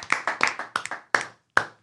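A single person claps their hands about ten times, sharp crisp claps coming quickly at first, then slowing and spacing out, with the last two claps isolated by short pauses. No talking.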